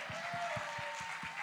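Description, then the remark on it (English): An audience at an evening teaching gathering claps for everyone who has taught so far, a dense wash of many hands with a few stronger rhythmic claps standing out at a regular beat, fairly even in loudness throughout. “Can we give another hand clap for everybody who's taught so far?”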